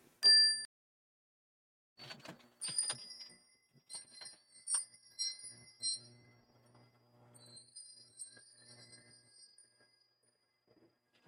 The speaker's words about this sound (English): And you'll notice that's a higher sound. And, you know, some teachers actually like to use this particular chime to get kids' attention.